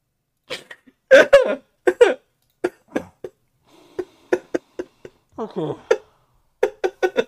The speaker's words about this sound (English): Holy shit. Just choked.